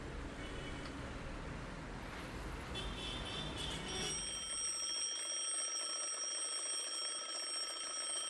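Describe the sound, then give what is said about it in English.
An alarm clock rings loudly and steadily, its shrill continuous tone cutting in partway through after a stretch of low rumbling background noise, then carrying on alone until the end. “There goes that old alarm clock once again.”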